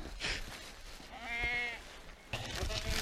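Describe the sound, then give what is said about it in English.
A sheep lets out one clear, wavering bleat about a second long at feeding time, over a rough outdoor background with more faint animal noise toward the end. “You're a good-looking sheep, mate.”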